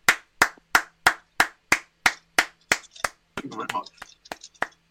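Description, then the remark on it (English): Steady hand claps ring out in an even rhythm, about two per second, followed by a brief burst of voices talking over a few scattered final claps. “If we just keep clapping, we can take up more time in the podcast.”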